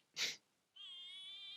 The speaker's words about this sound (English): You guys, this cat just like sings 24/7.